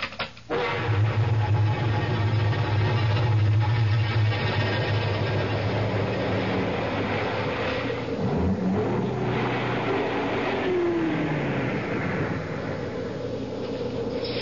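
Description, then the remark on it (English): A car drives along with a steady, low engine drone and road rumble that fills the whole stretch at a constant loudness, with no voices. “I guess this is as far as the car can take us.”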